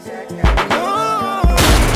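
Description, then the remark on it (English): A music track with loud, sharp gunshot sound effects cutting through it, one early blast and a heavier burst near the end, punching over the melodic backing. No one speaks. “Gunshot.”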